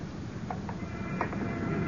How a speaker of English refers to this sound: There. There. Don't you hear the footsteps? Just ours. No, no. I mean the ones behind mine. Just a split second after every step I take. Behind me. Following.